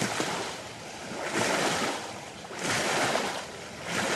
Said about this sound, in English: The muddy brown waters of the Hatchie River flow beneath a busy bridge a few minutes' drive from Brownsville.